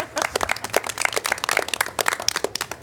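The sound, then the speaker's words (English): A small group of meeting attendees applauds the staff together, a dense patter of overlapping claps at steady moderate loudness that lasts about three seconds, with no voices heard. “Let's clap for it.”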